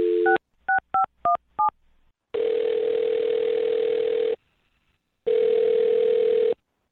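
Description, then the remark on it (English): A quick run of touch-tone beeps as a phone number is dialed, followed by two long, steady ringing tones separated by a pause, clear, with no talking. “I'm going to dial this phone number.”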